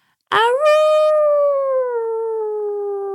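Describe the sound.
A person gives one loud, sustained wolf-like howl lasting about three seconds, starting with a quick upward swoop and then slowly sliding down in pitch, with no other sounds around it.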